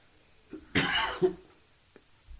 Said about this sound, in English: Can I cough on a podcast? You can. Is that okay? We can edit it out, or we can leave it in. Okay. It's a big editorial decision at 9:32 of the recording. Yeah, I think that was a piece of a sandwich I just wolfed down here.